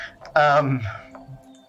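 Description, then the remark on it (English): A single loud sneeze bursts out suddenly after a faint intake of breath, its voiced tail trailing off over roughly a second. “Bless you”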